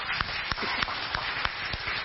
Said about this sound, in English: Let's give Jesus a big clap offering.